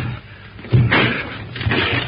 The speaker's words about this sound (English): Open the door, Tarzan. It is locked. I'm busy. Break it down. Come on, Mitchell. Righto, old chap. Now, together.